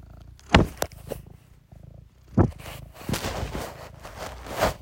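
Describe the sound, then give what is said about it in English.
A cat named Ivy purrs steadily into the microphone, a low rumbling drone broken by a few loud thumps and brushing bumps as she rubs her face all over the phone. “Can you hear the purr?”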